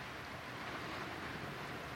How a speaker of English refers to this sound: It's a rainy evening here in Sonoma County, rainy and cold. I think you'll hear the rain on the roof of the podcasting shack.